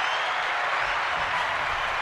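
Steady, dense applause from many hands fills the whole two seconds at an even volume, a continuous crackling wash of claps with no individual beats standing out and no voices.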